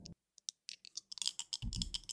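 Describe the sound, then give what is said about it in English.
Dice clack, a few sparse hard clicks that build into a quick, dense rattle of tumbling dice with a low rolling rumble at the end. No voices. “I need some dice clacking to edit into the podcast.”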